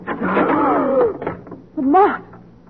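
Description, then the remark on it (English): A door creaks open with a long, drawn-out squeal of the hinges, followed by a second shorter, rising squeak, loud against a quiet background. “Where does that door go?”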